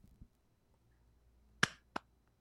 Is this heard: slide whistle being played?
no